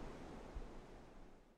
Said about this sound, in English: Inside the gates, a 1,200-foot artificial river surges, creating adjustable rapids suited for every level of whitewater expertise.